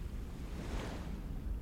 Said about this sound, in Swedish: Sträcker mig vant upp för att se horisonten. Drar åt skotet på rullfocken medan en ny våg attackerar båtens för.